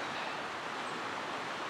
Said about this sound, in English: So the river sweeps down. It's come from sort of Crickhowell direction, and it sweeps down quite gently, relatively two big bends, and then it does this really sort of sharp bend and narrows, and there's white water here.